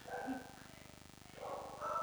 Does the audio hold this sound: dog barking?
yes